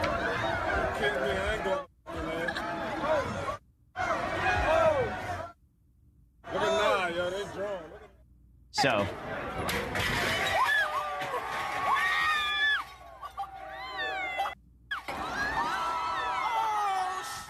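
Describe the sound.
A rowdy crowd shouts, whoops and cheers in a chaotic street scene as people destroy convenience stores, smash Macy's windows and collapse a hotel awning, loud, with bursts of crashing noise and screams cut into short segments separated by brief silences.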